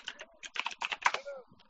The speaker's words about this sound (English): Oh, I'm scared. Are you going to report me? I hear a typewriter. Yep, you're going in our report.